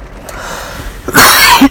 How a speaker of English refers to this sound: Excuse me. We're going to let that cough stay, because it's already an imperfect recording, and this is a candid podcast.